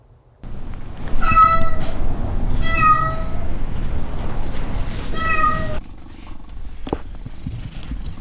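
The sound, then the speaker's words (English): Several cats, residents of the Pretty Paw Lounge, meow in turn: three drawn-out, wavering cries spaced a second or so apart, fairly loud over a low rumbling background hum. “I hope those meows and purrs provided some levity to your day.”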